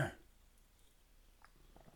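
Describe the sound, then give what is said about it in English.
A single short, gruff throat clearing bursts out loudly at the start, then fades into near silence with only faint rustling for the rest of the moment. “I just got to clear my throat.”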